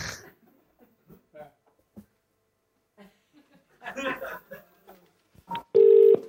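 telephone dialing tones

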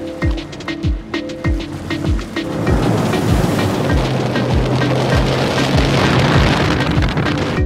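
ocean waves

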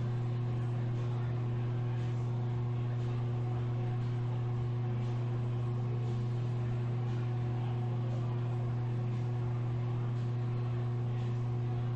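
electric fan running

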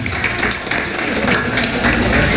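audience applause

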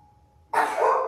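sneeze

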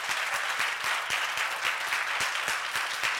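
audience clapping hands

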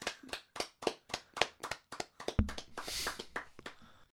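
hand clapping

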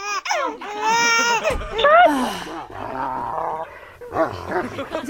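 dog barking and growling

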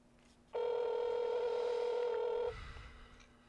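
phone call ringing

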